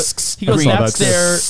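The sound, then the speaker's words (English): Someone imitates a spray paint can with their mouth: two quick, sharp hissing bursts, then a longer, loud spraying hiss blended with a voiced, buzzy tone. “He's saying he goes, or you can spray paint it.”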